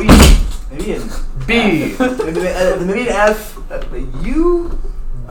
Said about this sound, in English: I didn't count how many knocks that was. That was a G or an H? I think that was more of a J or a K.